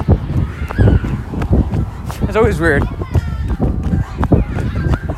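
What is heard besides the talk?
children screaming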